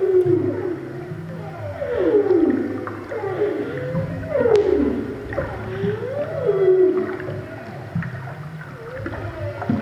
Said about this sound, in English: We're going to play a little bit of whale song and then we'll let you hear what the seismic blasts sound like if you were underwater.